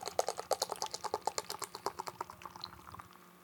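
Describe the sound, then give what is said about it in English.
Stout beer splashes hard into a glass, poured vigorously straight down rather than at an angle, a rapid run of sharp glugging, crackling bursts that thins out toward the end as the pour settles. “We're pouring right down the barrel. Vigorous.”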